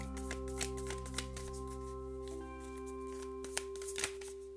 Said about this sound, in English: Okay, let me just shuffle.